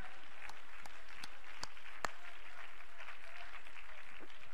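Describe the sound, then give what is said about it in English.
A crowd claps together in praise of the Lord, a dense, sustained wash of applause, with a few sharper individual claps standing out above the steady patter. “Clap your hands and let's praise the Lord together.”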